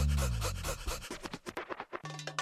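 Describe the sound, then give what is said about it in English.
A dog pants quickly and close up, a run of short, breathy huffs in a steady rhythm, with a low tonal hum at the start and end. “Bash Gruffy, get back, you flea infested mongrel.”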